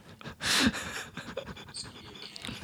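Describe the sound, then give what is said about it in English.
A small black dog with long, floppy ears, barely bigger than a cat, pants in quick, breathy bursts, with one louder huff near the start followed by softer, rapid panting that continues unevenly throughout. “you want to see this dog?”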